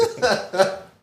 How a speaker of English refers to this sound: Sorry for coughing.